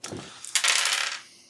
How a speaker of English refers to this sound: I want you to go ahead and roll all three of your dice at once.